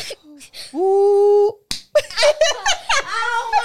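A single sharp slap of a hand against someone's neck as a game forfeit, preceded by a drawn-out vocal exclamation and followed immediately by bursts of laughter and excited voices.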